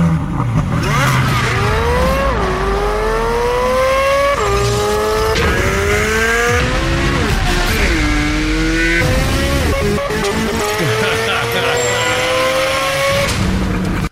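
A high-revving Chevrolet Corvette Z06 flat-plane crank V8 exhaust screams loudly through repeated upshifts, each rising wail cut by a sharp gear change, with crackles between pulls and no talking.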